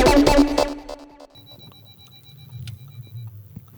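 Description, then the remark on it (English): A low-sitting car's warning alert for bottoming out: a loud burst of rapid electronic beeps, then a thin, high steady tone over a low rumble of the moving car. “My car sits so low that thinks that I'm bottoming out, which I totally am.”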